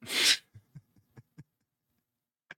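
sneeze

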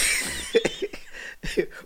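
coughing fit

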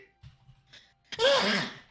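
sneeze

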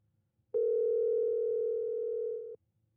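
phone call ringback tone

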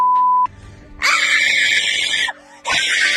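woman screaming angrily

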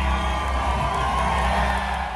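rally crowd cheering

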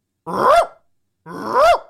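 dog barking and growling

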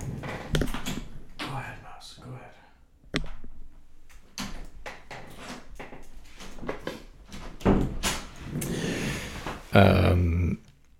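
door being opened

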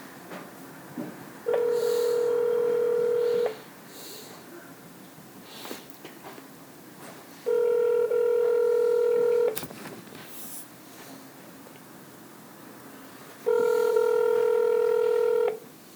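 telephone dialing and ringing

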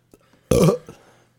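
burping

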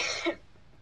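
sneeze

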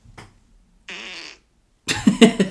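fart

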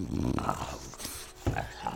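dog growling

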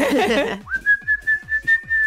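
whistle being blown

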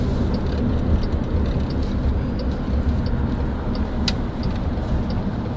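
car driving

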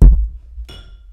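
glasses clinking

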